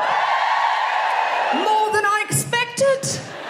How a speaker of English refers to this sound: So if you're a rich lady over 30, this is your special day. Just give us a cheer. Oh, they're all sitting over there, aren't they? Let's give us a cheer if you are a lady with a mortgage over 30.